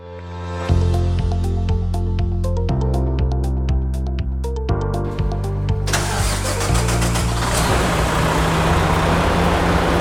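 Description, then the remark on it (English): A snowplow truck engine turns over and settles into a deep, steady idle while it is snowing outside, before a trip up the Cottonwoods to plow snow. Partway through, a loud broad roar and hiss rise over the rumble. No one speaks. “I'm going to head up into the truck right now.”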